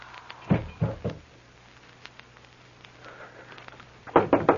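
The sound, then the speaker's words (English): Knocking at a door in two bursts of three firm raps, separated by a few seconds of quiet; the knocks sound distinct, with no voices. “There's a door. Someone there.”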